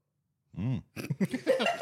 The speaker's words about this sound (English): just totally did the best internal burp then. That bubbled up and then back down my throat.